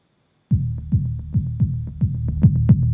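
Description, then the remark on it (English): A synthesizer app called the Cicada Ear Hoof, running on an iPad, kicks in abruptly with a rapid, throbbing pattern of plucky tones, each sliding downward in pitch over a steady low bass drone. No one speaks. “This is actually running on iPad, although the way it's lit, it actually looks like it's a plastic thing that does that, which is kind of cool.”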